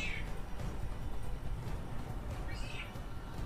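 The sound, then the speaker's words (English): A pet cat meows twice, thin and fairly faint, once at the start and again near the end, over a steady low background rumble with no talking. “Our cat is dying. I don't know what's going on. Very talkative.”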